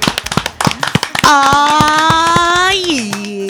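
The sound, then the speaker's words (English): A quick, loud burst of hand clapping lasts about a second, then gives way to a long sustained whooping voice that dips lower near the end. “Clap it up.”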